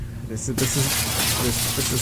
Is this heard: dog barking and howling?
no